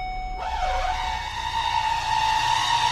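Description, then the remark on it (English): A car gives off a loud, brassy, trumpet-like squeal, like an elephant, that swoops down in pitch, then holds a steady, sustained wail for several seconds, continuous, with no voices. “Customer states, my vehicle sounds like an elephant.”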